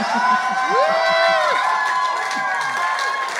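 A crowd claps and cheers steadily throughout, a dense wash of applause with rising whoops and shouts layered over it, fairly loud and without pause.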